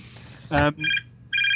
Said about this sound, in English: Hang on, we're beeping. No, that's my home phone number, which hopefully my wife's going to pick up any moment.